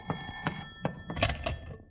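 A telephone bell rings in a quick series of metallic jangling bursts, a steady bright tone with rattling strikes, heard clearly on its own for a couple of seconds with no voices.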